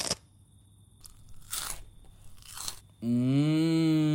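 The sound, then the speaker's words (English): Three sharp, crisp crunches of someone biting into a potato chip, spaced about a second apart, followed by a loud, sustained droning tone with a low buzzy pitch that cuts in abruptly. “Maybe you should try that while having a chip.”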